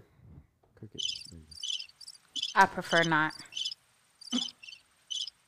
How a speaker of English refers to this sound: Oh, that was a question. Crickets.